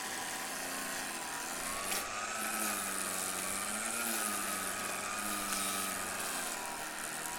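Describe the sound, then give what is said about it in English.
A small two-stroke engine drones steadily, a weed trimmer cutting weeds, running with a buzzy, high-pitched whine that wavers slightly in pitch as it labors, with no voices over it. “Okay, I will say, I'm not sure this is like whacking weeds so much as gently sculpting them, but maybe it's just kind of how I have to move forward.”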